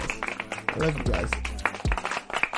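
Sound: hand clapping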